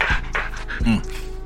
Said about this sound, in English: Guest appearance by dog. Dog. Dog solo now,